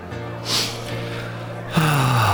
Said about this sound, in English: That was my sad, grief-stricken sniff that I just did for you.